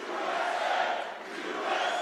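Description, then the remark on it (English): A small crowd of Trump supporters at Mar-a-Lago chants "USA" in unison as Trump speaks to them after returning from his arraignment, a loud, dense wall of voices that briefly dips in the middle before swelling back up, with no single speaker standing out. “After returning to Mar-a-Lago from the arraignment, Trump spoke to a small crowd of USA chanting supporters.”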